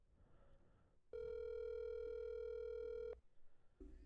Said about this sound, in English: Come on, bud. Please answer your dang phone.